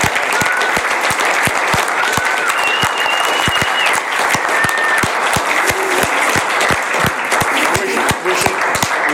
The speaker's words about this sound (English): Thank you to everyone who came to join us live. I really enjoy doing the live ones. I wish we could do these more often. So let's have a big round of applause for everybody. Thank you very much.